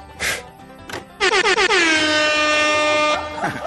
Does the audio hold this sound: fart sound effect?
no